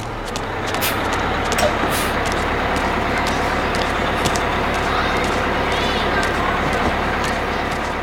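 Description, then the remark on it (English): A school bus pulls up, its heavy engine rumbling steadily and loudly throughout, with a few brief hisses and clanks over the constant drone. “Bus is here, gotta go.”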